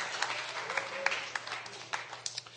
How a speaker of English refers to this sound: We're going to start the service by doing some baptisms. Yeah, it's worth clapping.